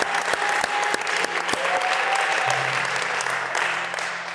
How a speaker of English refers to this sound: Come on, give our pastors a round of applause.